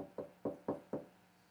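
Four quick, evenly spaced knocks on a door, solid, with a steady rhythm and no voices, followed by a short quiet tail.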